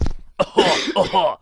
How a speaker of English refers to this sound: Hold on a second, gotta cough.